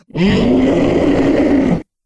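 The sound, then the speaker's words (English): A voice imitates a briar-woven creature howling in pain as it claws at its face after a grape is thrown at it: one loud, sustained, rough-edged cry lasting under two seconds, held at a steady low-to-mid pitch before cutting off abruptly. “As you chuck the grape right up toward it, it rears back, releasing one of its briar-woven arms from its grapple on Gaspard and begins to claw at its face and howl more.”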